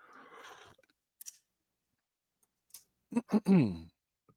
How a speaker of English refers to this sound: Take a little sip of water here.